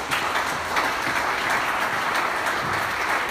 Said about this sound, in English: I like the way you clap. I like the way you clap.